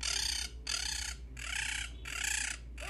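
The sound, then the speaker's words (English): A bright green Quaker parrot gives loud, raspy squawks, about five harsh grating calls in an even rhythm, with a steady low hum underneath and no talking. “The Quaker parents had bright green feathers and made a loud squawk that sounded like a motor that needed oil.”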